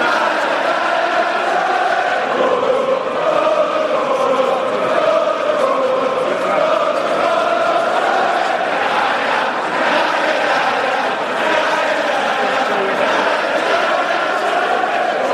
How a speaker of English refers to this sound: I'm not sure how they've managed to achieve this, but the crowd at the darts was the most rowdy, raucous, rampaging mob of happy drunkards I'd ever come across.